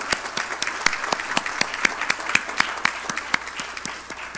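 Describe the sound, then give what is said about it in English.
A crowd applauds steadily for several seconds, many hands clapping at once with sharper individual claps standing out, the sound full with no one speaking. “But before we do that, so everybody can show their appreciation, let's give an applause for all of them.”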